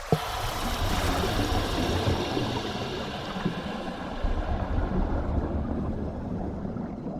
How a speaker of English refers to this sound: Now, start letting the air out of your BCD so we can slip below the surface of the water and down into the ocean's depths.